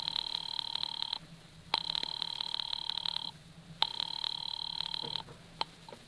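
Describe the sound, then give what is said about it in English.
A telephone rings in three long, trilling bursts separated by brief pauses, with a thin, filtered quality as if heard over a phone line, calling a husband's office. No one speaks. “Ringing Murray Hill 40098.”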